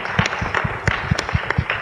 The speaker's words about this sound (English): You should give them a round of applause, too, for putting this on.